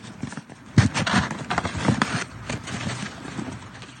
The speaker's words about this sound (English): Okay, here's the door number. Let's give it a knock. Let's see what happens.